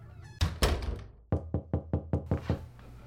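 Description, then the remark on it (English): A neighbor knocks on a garage door at Christmas: a loud rattling bang, then seven quick, evenly spaced knocks, each with a hollow, slightly metallic ring. No one speaks. “Hey neighbor, tried the front door, nobody answered, so thought we'd give the old garage door a try, and there you are!”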